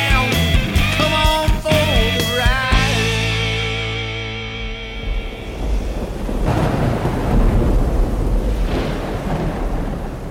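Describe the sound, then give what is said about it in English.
Heavy rain pours steadily in Mississippi with deep rolling thunder rumbling underneath; a snatch of music fades out in the first few seconds, leaving the loud, continuous storm alone. “You know, the rains came in today, and man, here in Mississippi, brothers and sisters, it does not rain cats and dogs.”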